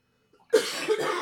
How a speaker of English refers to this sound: Jealous coughing.